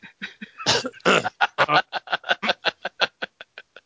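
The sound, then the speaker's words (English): A single voice acts out Luke Skywalker's coughing while retelling a Star Wars film: a couple of harsh, breathy cough bursts, then a steady run of short, choppy laugh-like pulses that gradually fade. “His laughs turn to coughs.”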